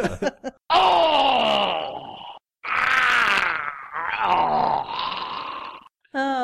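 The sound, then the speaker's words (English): A voice lets out long, drawn-out yells that slowly slide downward in pitch, like a shout played in slow motion, in three loud stretches separated by brief pauses. “Thank you for your slow motion yelling.”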